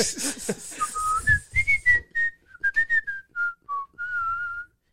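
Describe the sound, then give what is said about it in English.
A person whistles a short melodic tune, a string of clear notes that rise and fall in pitch, with a brief burst of rustling noise at the start. “Are you flexing your whistling skills?”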